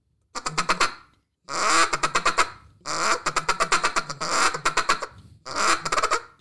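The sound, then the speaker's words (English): A duck call blown in a feeding chuckle: five quick bursts of rapid, rolling clucks separated by short pauses, fairly loud, with no talking. “People say that's a feeding chuckle.”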